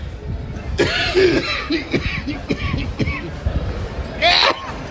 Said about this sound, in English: He's going to end up coughing.